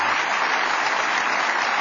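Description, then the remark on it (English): A crowd claps steadily for volunteers being acknowledged in the audience, a dense, even wash of applause that holds at a fairly loud level throughout, with no voices standing out. “Big round of applause.”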